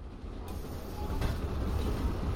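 A commuter train rumbles steadily along the rails, a dense low roar with faint creaking and metallic rattles, growing a little louder partway through. No one speaks.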